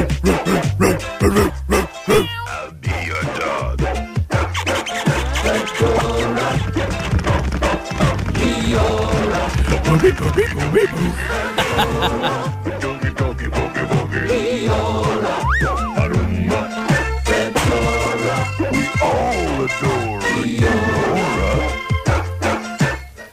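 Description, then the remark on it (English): A bouncy, old-fashioned 1980s cinema advert jingle plays loudly from start to finish. A dog's barks and clip-clopping, horse-like effects are mixed in with the music. “Got to be 80s, isn't it? Yeah, it was also, it was done in the cinemas.”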